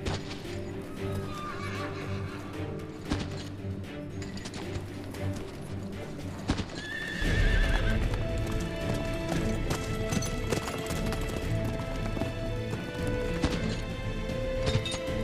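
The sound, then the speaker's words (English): Horses clip-clop along at a steady trot as Prince Edward rides out with his captors in Hereford, swapping horses to find the fastest; hooves knock in a busy rhythm, one lets out a high whinny partway through, and the hoofbeats grow louder and heavier in the second half. “So Edward plays a game with his captors, swapping horses to find the fastest.”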